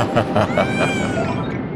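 A cat lets out a drawn-out, wavering meow, fairly loud, with its pitch gently rising and falling over nearly two seconds; no voices are heard.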